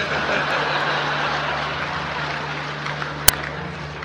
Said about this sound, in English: I have 2 words for you, predator drones. You will never see it coming.